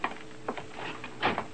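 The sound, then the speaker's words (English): A side door is opened: a few quiet clicks and rattles of the latch, the loudest pair near the end, with no voices. “Karl, open that side door.”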